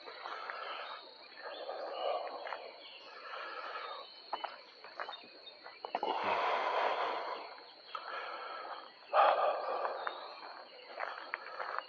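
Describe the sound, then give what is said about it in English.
A dense chorus of frogs buzzing continuously, with a steady high-pitched drone running throughout and the calls swelling louder around the middle and again near the end, no voices present. “You hear that buzzing sound? I think those are frogs.”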